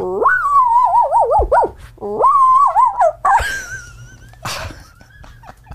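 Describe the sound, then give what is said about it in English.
A person imitates a Shih Tzu barking: loud, high warbling yaps and yowls in two drawn-out bursts, followed by a few shorter, rougher yips and a brief word. “That is how my Shih Tzu barks.”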